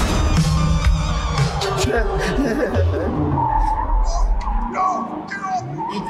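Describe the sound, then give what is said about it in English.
A car's tires screech loudly and continuously, a shrill, wavering squeal over engine rumble lasting several seconds, with voices faintly mixed in. “That's the car right there.”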